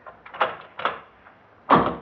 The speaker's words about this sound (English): We'd better close the door. Yes. You lock your lock